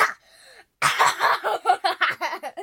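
A child who is getting over a cold coughs in a rapid run of harsh, breathy bursts, preceded by a short burst and a thin wheezy tone, with no talking.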